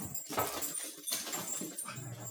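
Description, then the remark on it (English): A dog barks several times in quick, uneven bursts, sounding a little muffled, with no talking over it. “Would you ask that dog not to disrupt my”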